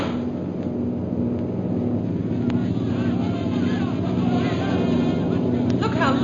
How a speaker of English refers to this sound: Most High Superior, here comes one plane right at us. It's going to drop a bomb.